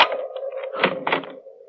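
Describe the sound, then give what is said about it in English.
A short burst of mechanical clicks and rattling thunks as a bedroom door is unlocked and its latch released, followed by a faint creak as the door swings open. “Just a minute, I'll unlock the door.”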